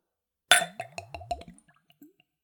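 A spirit glugs from a freshly opened bottle fitted with a splash arrestor into a clean, tulip-shaped Glencairn whiskey nosing glass, poured neat at room temperature, starting with a bright clink and then five or six quick, rhythmic gurgling pulses that taper off into a few faint drips.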